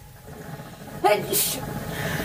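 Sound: sneeze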